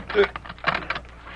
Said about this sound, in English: I'll have to twist off the lock on the barn door. You make any noise and them two will be out here, the gun's blazing.